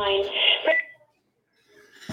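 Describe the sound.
A phone gives a short electronic beep when the wrong button is hit during a spam call, a couple of high steady tones over a murmur of voice, followed by a second of silence before someone starts talking again.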